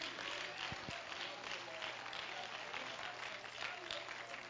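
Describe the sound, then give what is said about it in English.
An audience clapping their hands to praise the Lord in worship, a dense, continuous patter of many claps that holds a steady loudness throughout, with a low hum running underneath. “Oh, clap your hands and let's praise the Lord.”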